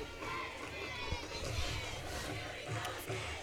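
A large football stadium crowd roars continuously as the team goes for a two-point conversion, a dense wash of cheering and shouting from many voices, loud and sustained with a few brief surges, no single voice standing out.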